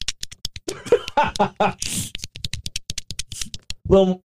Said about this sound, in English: I am going to lick my finger just to get a little wet. Oh, God. And I'm going to shove it in my belly button, in and out. And look at, check out the noise.